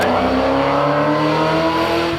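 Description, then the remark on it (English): A small Hillman Imp race car engine revs hard and loud as it passes by during a motor race, its pitch sliding steadily across a couple of seconds with no voices present. “Yeah, you got it. The Hillman Imp.”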